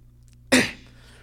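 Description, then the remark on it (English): A voice mimics the cough of a character named Pride: one sudden, harsh, breathy burst that fades within a fraction of a second, over a faint steady low hum with no other talking. “And he starts coughing.”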